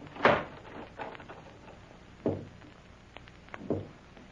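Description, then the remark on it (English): A house door is shut with a solid thud, followed by two more dull wooden knocks spaced a second or so apart, with otherwise quiet and no talking. “Close the door.”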